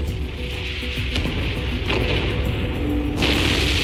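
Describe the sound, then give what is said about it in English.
An explosion with a heavy, continuous low roar and several sharp booming bursts breaking through, loud and muffled like recorded footage played back, with no one talking. “This is the video footage of the actual explosion.”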